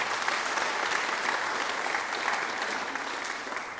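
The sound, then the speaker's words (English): A crowd of people claps steadily in applause for the worship team after going through the Christmas story via scripture and carols, the dense applause holding at a constant level for several seconds before easing off slightly toward the end. “Can I have a round of applause for our worship team because they've been doing fantastic.”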